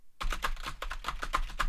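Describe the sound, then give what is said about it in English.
Rapid, forceful, angry typing on a computer keyboard, a dense flurry of sharp key clacks, loud and continuous with no pauses. “that was the collector nerds typing to Steve Ozer”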